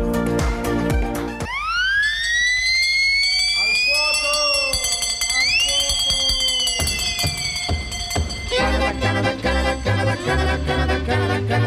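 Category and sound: signal or alarm, alarm ringing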